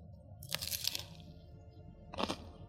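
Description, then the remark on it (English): Two crisp, crackly crunches from biting into a crunchy classic BLT sandwich, the first longer and the second shorter, with faint low chewing sounds between them. “Ooh, good crunch, big.”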